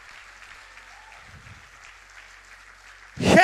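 A crowd claps steadily in a dense, even patter of many hands, giving the Lord a clap and a shout, then a loud burst of cheering and shouting swells up at the very end.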